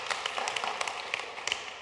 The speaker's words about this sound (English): Amen? Come on, let's give God a hand clap this morning.